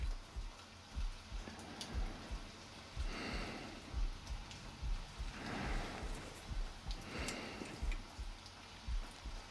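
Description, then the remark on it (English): Steady rain falls and patters on a surface, with scattered drips ticking irregularly and a few brief louder swells of spray; no one speaks. “There's the rain.”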